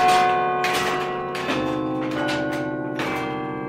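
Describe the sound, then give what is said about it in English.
Church bells ring out in a steady sequence of strikes, about one every three-quarters of a second, their rich overlapping tones sustaining and blending between hits. No one speaks. “Obviously, I think bells are important.”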